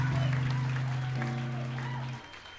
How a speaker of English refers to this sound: All right. Thanks a lot. You guys are good at clapping, all right.